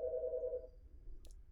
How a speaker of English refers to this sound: I'm not going to answer the phone.